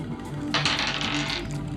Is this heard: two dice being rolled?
yes